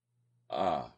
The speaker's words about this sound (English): Excuse me, hiccup.